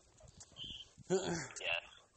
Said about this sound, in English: also because dogs won't shut up.